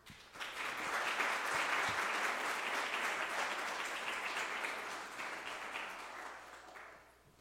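A room full of people applauds, steady dense clapping that swells quickly, holds for several seconds, then tapers off. No one speaks over it.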